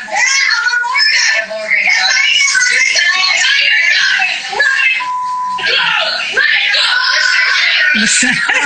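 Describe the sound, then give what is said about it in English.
Loud, sustained high-pitched screaming that carries almost without pause, with a few brief dips, sounding like a shrill voice or voices shrieking continuously from a television. “I can't take the screaming.”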